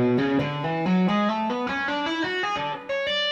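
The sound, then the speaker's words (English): A distorted electric guitar plays a quick descending major scale entirely with hammer-ons, even the little finger hammering notes, each pitch stepping smoothly into the next with rich sustained harmonics and no picking attack, steady in loudness throughout. “Coming down, I'm hammering as well. Even the little finger is hammering the note.”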